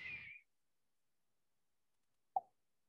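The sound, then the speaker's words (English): A voice imitates a firework fitted with a silencer: a short high whistle fades out, then after about two seconds of silence comes a single soft, dull plop. “I'm sure they're going to have silencers for fireworks one of these days where it just goes.”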